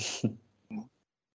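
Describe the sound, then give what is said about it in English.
A sharp, breathy nasal snort clears congestion from the nasal passages, followed by a shorter second snort a moment later. Both are fairly loud, with no talking. “If so, blow it out. Is there any congestion in the sinuses and the nasal passages and all of that? Clean it out.”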